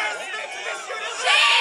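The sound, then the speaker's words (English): A crowd at a vigil for a student who was shot shouts together in a loud, dense wash of overlapping voices, swelling louder toward the end with no single speaker standing out. “You can't reason with this crowd.”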